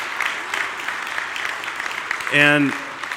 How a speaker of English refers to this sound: And can we just give our mothers a round of applause one more time? I just think they deserve it.